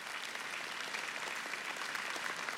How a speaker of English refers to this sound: Yeah, it's worth clapping.